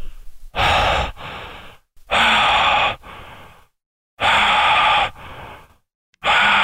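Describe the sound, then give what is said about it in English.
A voice imitates Michael Myers from the film Halloween: slow, heavy, rasping breathing as if muffled behind a mask. Loud, breathy rushes each trail into a softer one, repeating in a steady rhythm about three and a half times. “You hear him breathing behind the mask.”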